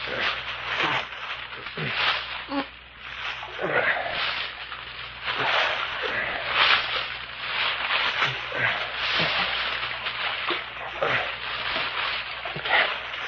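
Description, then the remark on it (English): A creek flowing steadily, a continuous rushing, bubbling wash of water that holds an even loudness for the whole stretch, with small irregular splashes rippling through it. “Hey, Captain, you can hear the creek. Listen. Oh, don't that sound cool and refreshing?”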